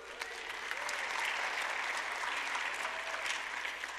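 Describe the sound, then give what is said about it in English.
An audience in a church claps steadily, a dense, even patter of many hands at moderate loudness that holds for about four seconds without pause, with no talking over it. “In my notes, that wasn't an applause line, but thank you.”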